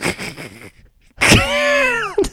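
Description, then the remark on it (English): A voice doing a Ben Affleck impression imitates an old car trying to start: a sputtering, rattling crank, a pause, then a sharp burst into a strained, wavering engine whine that dips in pitch and ends with a short puff. “Please do Ben Affleck making the sound of a car starting and driving away.”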